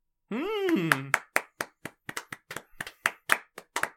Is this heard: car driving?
no